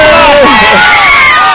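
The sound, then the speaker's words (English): A loud crowd at a sheep shearing event cheers and shouts continuously for a shearer finishing his final sheep, a dense roar of many voices with rising whoops, sustained at full volume throughout the short burst. “Come on, cheer him on, let's hear it.”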